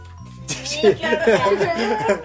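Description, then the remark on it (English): A child imitates a cat meowing with a quick run of short, sing-song rising and falling vocal sounds, fairly loud. “I'm not a mouse, kitty cat.”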